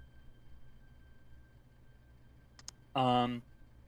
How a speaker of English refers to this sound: So as you're kind of half focusing and just paying attention and kind of resting, you can hear the consistent clicking and ticking and buzzing noises coming from wearing that necklace.